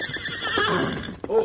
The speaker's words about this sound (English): Oh, boys. Here are the horses. Very good.